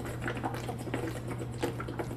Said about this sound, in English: How about we hydrate real quick?